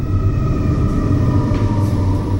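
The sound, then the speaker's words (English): A train engine rumbles past with a steady, heavy low-frequency roar and sustained mechanical hum, loud and continuous throughout, with faint higher whines layered over the drone. “Pause for the engines.”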